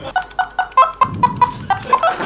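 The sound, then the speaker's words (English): A keyboard synth patch chirps out a quick, steady run of short clucking notes, about a dozen in a row, fairly loud, mimicking a hen. No talking. “Sounds like a hen.”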